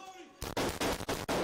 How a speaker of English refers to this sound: Police body cam footage released Tuesday shows officers putting the shooter down as she fired on police cars arriving at the school.